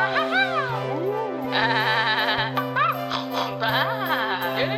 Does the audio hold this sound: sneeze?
no